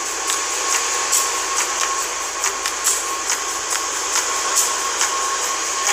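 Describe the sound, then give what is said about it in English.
Loud, steady roar of industrial cooling fans at a crypto mining site, a dense whooshing rush with a faint whining tone. Soft ticks recur every second or so, and nobody speaks. “Oh, is it the air being it's a fan, yeah.”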